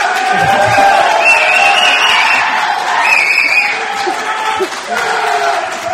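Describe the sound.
A loud crowd cheers and whoops continuously for several seconds, many voices shouting together in a sustained, energetic roar with rising yells.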